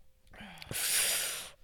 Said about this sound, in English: just doing breathing ASMR on the pod.